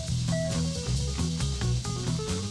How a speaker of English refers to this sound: More noodling on there. Uh-huh. Oh, a little bit of bass guitar noodling. Mm-hmm. It could be a bass and keyboard noodle off.